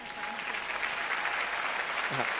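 An audience applauds two teachers who became Amway business people, a dense continuous patter of many hands clapping at an even loudness, with a faint voice briefly rising near the end.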